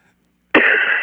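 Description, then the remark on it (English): After a moment of silence, a sudden, loud, harsh cough from a sick man joining by phone bursts out and rasps on for about half a second, rough and breathy with no talking. “I was really trying not to cough, and then it just came out.”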